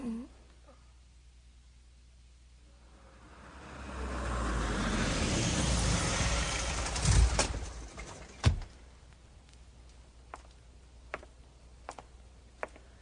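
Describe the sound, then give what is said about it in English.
A car approaches and rumbles louder for a few seconds, then a solid door slam cuts through as the engine fades, followed by a few faint scattered clicks and taps. “And the car is on its way.”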